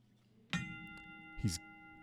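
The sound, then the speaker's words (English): A guest bell ringer strikes a ring bell twice, about a second apart. Each clang is sharp, with a bright metallic tone that keeps ringing between and after the hits. “And we have a guest bell ringer.”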